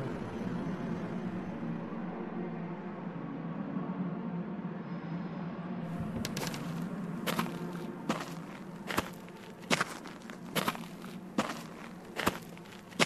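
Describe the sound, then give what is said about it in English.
Footsteps on hard compacted earth in a Foley theatre, about a dozen crisp, gritty steps in a steady walking rhythm, starting partway in over a constant low rumble of background noise. “This is hard compacted earth.”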